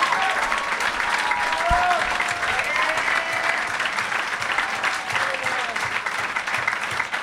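A live comedy show audience at the Go Bananas venue in Cincinnati applauds the performers steadily for several seconds, a dense, even wash of clapping with scattered whoops and faint cheering voices rising above it.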